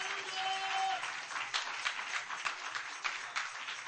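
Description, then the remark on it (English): An audience claps their hands to the Lord in sustained, dense applause before being seated, many overlapping claps at a steady, moderately loud level, with a brief tone lingering at the start. “Clap your hands to the Lord one more time before we're seated. Come on, clap them real good.”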